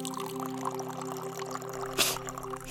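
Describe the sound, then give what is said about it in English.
Antiseptic solution is poured in a soft, steady trickle over a low background hum to clean a wound and keep it sterile, with a brief brighter splash near the end. The sound is fairly quiet, and no one speaks. “Why does that water smell so strong? It's not water. It's for keeping the wound sterile.”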